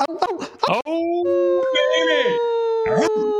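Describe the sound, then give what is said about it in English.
A wolf pack howling together, several long wavering howls overlapping into a sustained chorus after a brief burst of yips and barks at the start, loud. “you know what's even more exciting than a great white shark? A wolf pack.”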